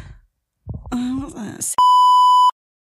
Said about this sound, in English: I'm going to tell you, but we're going to beep it.